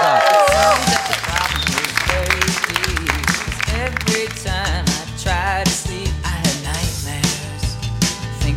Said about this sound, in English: Applause for that dress.